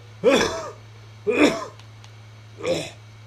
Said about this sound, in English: Let me cough really fast, because I choked earlier.